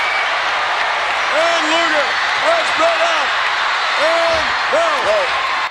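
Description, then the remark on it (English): A wrestling arena crowd roars loudly and continuously as Luger and Bret Hart fight as the final two, a dense wash of cheering with repeated rising-and-falling shouts and whoops cutting through for the whole stretch. “Crowd are going bananas.”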